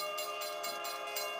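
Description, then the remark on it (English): A train approaching in the distance, a steady droning hum layered with a rhythmic, repeating hiss of bursts, fairly loud throughout and with no one speaking. “I could hear the train in the distance now, but I didn't care.”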